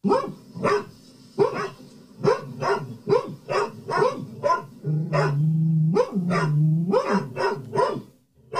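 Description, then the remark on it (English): Two dogs bark back and forth in quick, overlapping bursts, one pitch slightly deeper than the other, with a low growling whine sustained between barks midway through. Fairly loud. “So is that two dogs barking or is that just one? That's two.”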